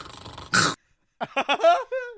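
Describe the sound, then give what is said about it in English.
A person gives a short, playful growl: a brief rough burst, a pause, then a run of throaty voiced rumbles, with no words spoken. “Number one, I may or may not growl a little bit when you're near me.”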